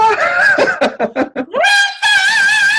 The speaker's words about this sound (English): I can have a high-pitched screaming contest and blow up the mics. Who's going to blow up the mics first?